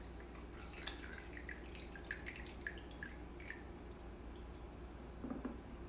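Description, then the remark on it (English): Coffee being poured into a cup, heard as soft, irregular drips and small splashes of liquid over a low steady hum, fairly quiet, with no one speaking. “I'm pouring my coffee now.”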